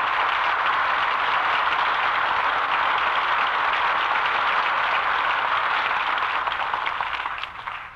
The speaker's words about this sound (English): That well-earned applause deserves a curtain call.